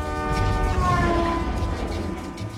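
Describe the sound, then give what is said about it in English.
A car alarm horn blares in one long, continuous honk as the car is thrown through the air by a giant, loud and steady with a rich buzzy tone, its pitch wavering slightly toward the end as it gets farther away with a Doppler effect. No voices are heard. “The sound of the car horn getting farther and farther away. That's great Doppler effect.”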